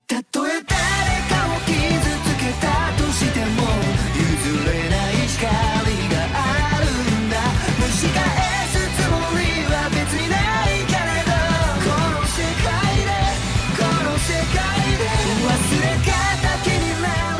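An energetic opening theme from the anime Dr. Stone: New World plays loud and continuous, a dense full-band arrangement with a steady driving beat and bright melodic lines running throughout.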